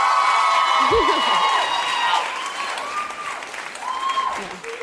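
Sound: audience cheering and applauding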